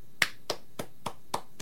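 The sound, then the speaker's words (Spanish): Five crisp hand claps in a steady, evenly spaced rhythm, each sharp and bright with a quick decay, fairly soft overall and with no voices, from the applauders on Ciudad Caníbal. “Vienen los aplaudidores de nuevo acá, Ciudad Caníbal.”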